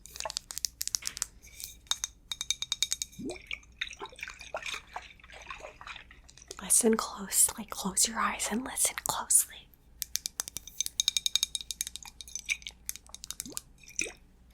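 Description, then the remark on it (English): Quiet handling of a glass Seedlip bottle: bursts of crisp taps and clinks, then a stretch of rubbing and sloshing, then more rapid tapping, with soft whispering in between. “Yeah, this is a bottle. This is a glass bottle.”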